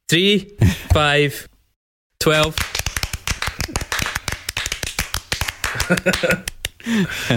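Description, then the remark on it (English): A crowd claps a math-rock rhythm together, quick, uneven and stop-start for several seconds, sharp and loud. Voices talk briefly before the clapping and again as it ends. “Can we manage a math clap?”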